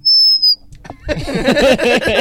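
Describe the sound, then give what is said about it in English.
A single loud, high-pitched electronic beep from a soundboard lasting about half a second, followed by a pause and then a burst of overlapping voices and noisy chatter. “Wait, no, we can make the beep.”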